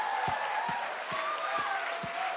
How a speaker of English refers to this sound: Come on, put your best hand clap together. Woo!